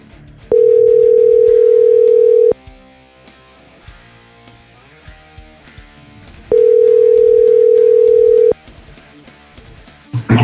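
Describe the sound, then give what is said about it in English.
An outgoing phone call to Darby Allin: the ringing tone is two long, steady mid-pitched buzzes, each about two seconds, separated by a pause of roughly four seconds, sounding over soft background music. “Let me give Darby Allin a call.”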